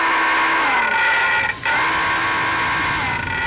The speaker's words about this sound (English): Mr. Simone, sound the diving alarm.